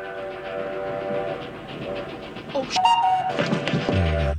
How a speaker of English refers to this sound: Here's a little clip of Will Wheaton almost getting hit by a train. Train!